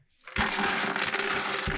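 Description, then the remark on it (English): Metal dice clatter and roll in a dense, continuous rattle of bright clicks, starting suddenly after a brief quiet moment and staying loud to the end, with no one talking. “Really hear those clickety-clacks coming.”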